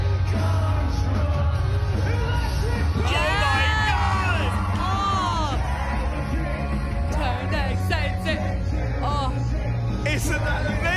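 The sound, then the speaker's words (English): A large concert crowd sings along loudly, every word of the song, many voices merging into a dense, continuous roar of melody with occasional yells rising above it. “Listen to the crowd.”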